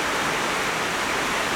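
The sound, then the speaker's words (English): Steady, dense rain pattering on a tin roof, a continuous even hiss with no breaks or distinct drops standing out, and no voices. “Gracious Heavenly Father, we are so thankful for the wonderful noise that rain makes.”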